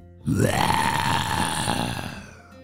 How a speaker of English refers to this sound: What was that sound? Said Luka. As they turned around, there it was. A ginormous Nile crocodile with a giant mouth gaping wide open.